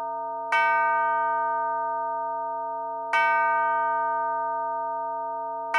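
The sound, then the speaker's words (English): A mantel clock strikes with resonant metallic chimes, three evenly spaced strokes about two and a half seconds apart, each ringing out and slowly decaying into the next, with no voices. “Just at that second, the clock on the mantle began striking.”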